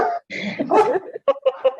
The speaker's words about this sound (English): Sorry that there's a dog barking.